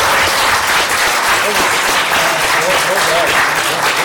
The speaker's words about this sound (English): All right. Big round of applause. Excellent debate.